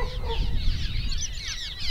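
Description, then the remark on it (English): A dense flock of birds honking like geese around a tall brick pump station building at North Beach by a lake, many overlapping calls layered continuously over a low background rumble, steady throughout. “where there's birds everywhere.”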